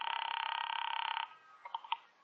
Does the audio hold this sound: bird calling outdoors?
no